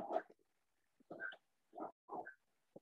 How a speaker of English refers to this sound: My grandma's dog is outside in this misty air and doesn't like it. It's misting out here.